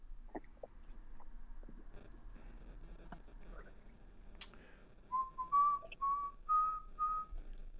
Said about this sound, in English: I don't know if whistling was the best idea to start into this new microphone, but we're on.